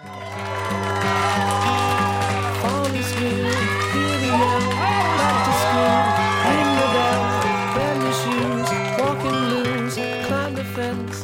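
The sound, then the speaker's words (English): A small audience of about 11 people gives a standing ovation, cheering and applauding steadily, with whoops and clapping layered over upbeat band music that keeps playing throughout, at a fairly loud, even level. “There's not enough of you to make a standing ovation exciting.”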